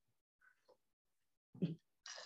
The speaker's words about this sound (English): Hold on, let me take a sip of my tea.